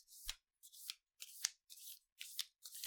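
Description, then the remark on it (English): A deck of oracle cards is shuffled in six quick, crisp riffling bursts at a steady rhythm, fairly quiet, with short pauses between each pass and no voices. “And while I shuffle this, just another thought on regeneration.”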